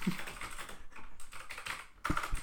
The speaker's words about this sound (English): So I can't hear you over the loud keyboard.